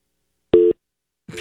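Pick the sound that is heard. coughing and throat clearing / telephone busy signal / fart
telephone busy signal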